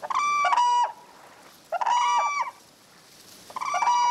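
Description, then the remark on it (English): Whooping cranes along the Platte River in central Nebraska at first light call in three loud, harmonic bugling bursts spaced about two seconds apart, each a quick run of trumpeting notes, clear with quiet gaps between and no voices. “The pilot and two observers are searching for whooping cranes.”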